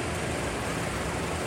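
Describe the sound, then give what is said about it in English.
A chauffeur-driven black Cadillac pulls into the Pepsi plant in Long Island City in October 1938; its engine and tires give off a steady, broad rumble, holding an even level throughout the brief moment with no voices. “Walter Mack's chauffeur-driven black Cadillac pulls into the Pepsi plant in Long Island City.”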